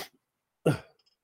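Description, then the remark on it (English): A single sharp cough bursts out after a brief short sound at the start, followed by a throaty rasp that trails off into quiet. No one speaks. “Is coughing ASMR then?”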